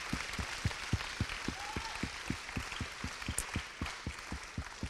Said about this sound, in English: Let's clap our hands. Amen. Hallelujah.